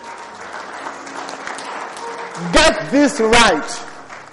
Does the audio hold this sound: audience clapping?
yes